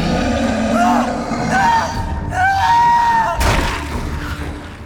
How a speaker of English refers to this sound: Before Setna could say anything, he heard a distant, agonized scream, followed by a horrible tearing sound. It seemed to echo across a great distance, as if part of the sky itself. Then, just as suddenly as it had begun, it was gone.